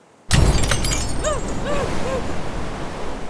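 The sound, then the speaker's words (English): A car window suddenly shatters inward during a crash with a loud burst of breaking glass, followed by a sustained gritty rush and a few ringing tinkles of falling shards. “Maggie's window exploded inward, peppering the side of her face and head with glass”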